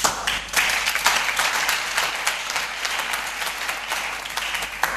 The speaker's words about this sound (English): I'm even surprised some of you are clapping because I didn't expect you to clap.